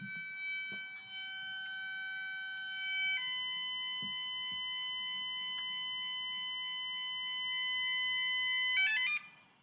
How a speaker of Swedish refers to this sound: Så om man inte var rädd innan, då blir man ju det när man sätter på larmet. Jag tyckte typ det var lite trevligt. Nej, det låter i hela huset.